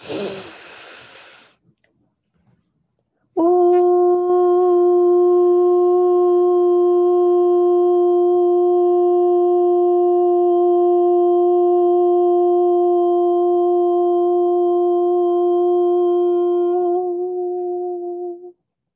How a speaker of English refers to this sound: Breathing into that green disc. And here we chant, ooh.